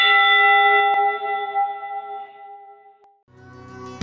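A single loud church bell strike rings out with a long, shimmering decay, then a second strike begins just before the end, part of a bell rung 29 times, once for each man of a ship's crew. No voices are heard.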